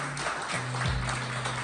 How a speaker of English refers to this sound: y'all clap it up for the horrible.